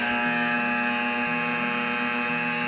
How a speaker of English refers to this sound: That klaxon means that the stage one engine has fired.